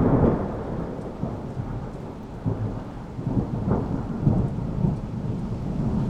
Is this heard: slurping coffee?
no